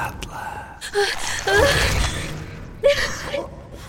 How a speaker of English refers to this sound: As soon as our skin touched, a lightning bolt of electricity shot through me. My vision became blurry and I gasped for air.